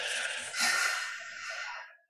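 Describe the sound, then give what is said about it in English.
A steady inhalation through the nose during a relaxation breathing exercise, a soft airy rush lasting about two seconds that swells slightly midway and then tapers off, with no voices. “So breathing in.”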